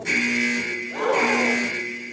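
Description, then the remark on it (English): A harsh electronic quiz buzzer drones steadily for about two seconds, a brief surge of noisy clatter swelling up in the middle before the flat tone carries on alone. “Oh, and the buzzer has gone, but your final answer was correct!”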